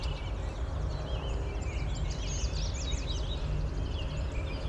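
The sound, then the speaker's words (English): A dense outdoor chorus of several birds, including Tennessee warblers and red-winged blackbirds, singing at once, with overlapping trills and high chirps throughout, over a steady low rumble of background noise as a car goes by, recorded on an iPhone. No one speaks. “A lot of bird song here, and a car going by.”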